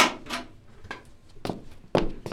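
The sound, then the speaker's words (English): A door opens with a series of hollow wooden thuds and clunks, followed by a few footsteps as someone comes in, moderately loud, with no talking. “Come on in. Door's open.”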